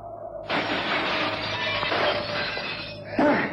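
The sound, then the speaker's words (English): A glass skylight shatters with a sudden, loud crash as a man jumps through it, followed by a sustained spray of breaking and tinkling fragments, then a second sharp burst of smashing near the end. Intense, with no talking. “I'm going to simply jump through the glass.”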